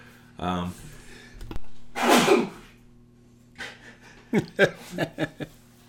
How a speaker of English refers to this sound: sneeze as usual.